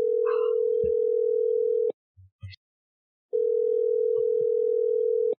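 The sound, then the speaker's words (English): A telephone ringback tone from an outgoing call to a man at Mystic Hot Springs: a steady, clear electronic buzz lasting about two seconds, a short pause with faint clicks, then a second long ring. No one speaks. “So let's give him a call.”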